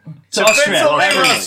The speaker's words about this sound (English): We're not toasting Fritzl, we're toasting Austria. Cheers.